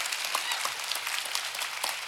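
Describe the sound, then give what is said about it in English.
Steady audience applause for a family pastor, a dense wash of many hands clapping at an even level with bright, crackly texture and no pause for the whole stretch. “would you just give a little applause?”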